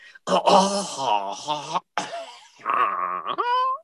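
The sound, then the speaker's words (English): A person clears their throat in a series of loud, raspy, voiced rumbles with brief pauses between them, ending on a rising vocal hum. “Just clearing my throat, yes.”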